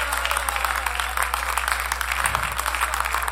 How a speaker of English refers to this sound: Clap your hands to the Lord this morning.